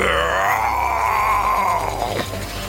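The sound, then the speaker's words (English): A person voices a mighty, echoey roar for a creature whose body is aflame, its hair charring to ash: one loud, sustained growling cry that holds steady for about two seconds, then breaks and drops off at the end. No other talking. “And it just lets out a mighty echoey roar.”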